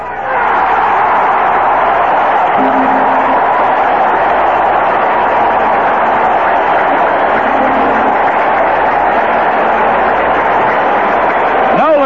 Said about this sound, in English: A standing ovation for the young man from Alvin, Texas, as he disappears into the Angels dugout along the third base line.